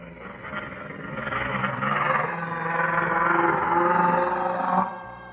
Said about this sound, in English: If you didn't know, that's the sound a Hydra makes.